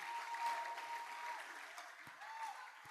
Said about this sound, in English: Please clap, clap, clap, clap.